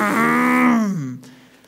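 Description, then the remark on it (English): A voice imitates a car speeding away: a buzzing, engine-like vocal drone holds steady, then slides downward in pitch and fades, lasting under two seconds. “That's my sound for driving off fast, right?”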